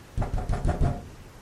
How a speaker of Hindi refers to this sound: वो औरत जोर जोर से दरवाजा को पीटने लगी।